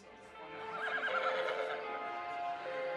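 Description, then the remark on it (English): A horse neighs, a loud, quavering whinny that rises and wobbles for a couple of seconds, with faint hoof clip-clops and no voices alongside, from the movie Gelding playing on TV. “It's really terrible what they did to those horses.”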